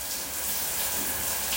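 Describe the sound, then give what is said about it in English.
A shower in a second-floor bathroom runs steadily, with a continuous hiss of spraying water holding an even level throughout. No voices are heard. “the shower in the second floor mud bathrooms was cleaner than the shower in her dorm, West Fairchild.”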